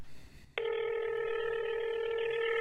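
After a brief moment of near silence, a steady electronic telephone tone from a recorded phone call switches on abruptly and holds unbroken, fairly loud, with no one speaking.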